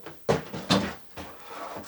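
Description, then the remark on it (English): A door being propped open with a trash can: several hollow knocks and bumps with a short scrape between them, like a plastic bin shoved into place against the door. “Wait, let me try see if I can prop that open with the trash.”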